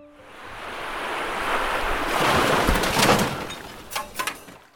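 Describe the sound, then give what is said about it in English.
Ocean waves wash and surge steadily around a moving boat approaching an island made of trash through garbage-filled sea, building to a louder crest midway before a few sharp splashes near the end, with some wind buffeting the microphone. “As we approached its grimy shores, the sea around us went from ocean with a side of garbage to all garbage.”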